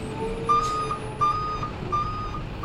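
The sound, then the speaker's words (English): A truck reverses toward some cars about 2 meters away, its backup alarm sounding steady, evenly spaced beeps over a low engine rumble, clear, with no one talking. “That truck is not going to make it past those cars.”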